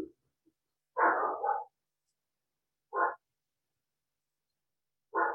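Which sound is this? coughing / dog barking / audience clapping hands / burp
dog barking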